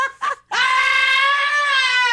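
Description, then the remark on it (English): Yoko Ono lets out a loud, sustained, high-pitched scream in scream therapy style, lasting well over a second, preceded by a couple of short breathy vocal bursts, with no talking; posted as her reaction to Donald Trump's win. “It's scream therapy.”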